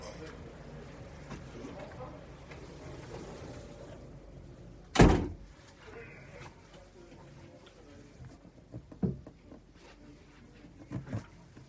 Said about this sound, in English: The other, one second, let me just close this door.